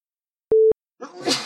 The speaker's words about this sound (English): Bless you